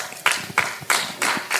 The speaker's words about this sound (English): Let's clap for the Lord Jesus.